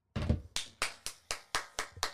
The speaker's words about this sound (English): I'm the only one clapping, but hopefully you're clapping there at home as well.